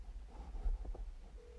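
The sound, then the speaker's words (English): Faint phone dialing tones as someone tries to call a person, a few brief beeps followed by a steady tone that begins near the end, partly buried under a low rumbling background, with no talking. “I'm trying to call him.”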